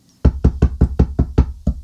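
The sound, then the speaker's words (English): Eight quick, loud knocks on a door in a steady, rapid rhythm, insistent, with no voices. “Is there urgency around this knock?”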